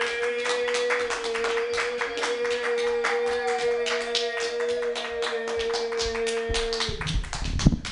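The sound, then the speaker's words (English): An audience claps steadily for a stand-up comedian for several seconds, a dense patter of hand claps over a faint sustained low tone, swelling briefly louder just before the end. “Well, clap for me.”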